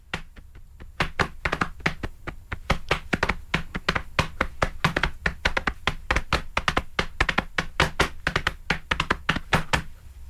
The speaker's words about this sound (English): I'm going to play a TV theme tune on my stomach and see if you can guess what it is. Go for it. Here we go. TV theme tune on my tummy. 3, 2, 1.